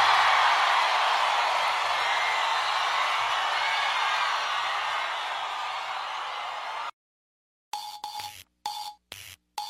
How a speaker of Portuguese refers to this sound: Senhoras e senhores, uma salva de palmas para o senhor ….